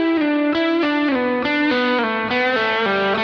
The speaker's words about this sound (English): That was all third string there. And I'm sliding and hammering on and pulling off. It gets very legato there.